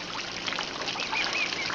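A few thin, high bird chirps ring out briefly over a steady wash of trickling water, faint, with no voices present.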